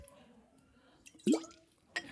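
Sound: handling a water bottle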